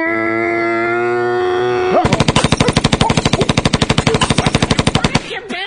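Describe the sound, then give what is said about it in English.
A steady, droning harmonic tone gives way to a loud, rapid burst of machine gun fire, dozens of evenly spaced sharp shots rattling for about three seconds before stopping abruptly. “Didn't you say no machine guns?”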